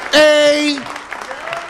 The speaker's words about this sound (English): You don't have to clap.